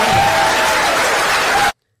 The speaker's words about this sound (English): Okay, you heard people clapping.